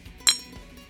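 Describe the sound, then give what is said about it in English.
A single bright clink of glasses touching in a toast during a spirit tasting, sharp, with a short ringing tail fading into quiet. “All right, let me say cheers.”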